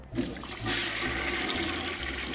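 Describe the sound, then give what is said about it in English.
A standing toilet, a demonstration model, flushes: a steady rushing surge of water with a low gurgling rumble underneath, sustained and fairly loud for a couple of seconds with no voices. “And don't forget to flush.”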